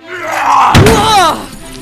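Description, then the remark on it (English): A sudden crash of breaking mirror glass with a heavy thud as a body is smashed against mirrors, brief, set against a strained, wordless voice that groans and wails before and after the impact. “Then I will smash you against these mirrors until your spirit essence is drained from your body!”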